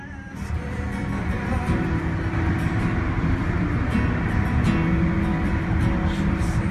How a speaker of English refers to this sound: It was a windy day in Indianapolis. Yeah. it's like just cars. That's just cars. This is a drive-through Starbucks, by the way.